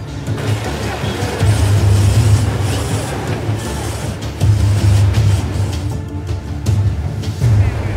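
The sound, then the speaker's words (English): A car stuck in a rushing river revs and strains its engine in repeated bursts as it tries to get free, over a steady, broad rush of flowing water, loud throughout. “With each move, the car comes dangerously close to being swept downstream.”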